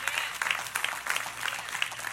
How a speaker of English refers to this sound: Now, you might clap your hands, but I'm a Christian before my race.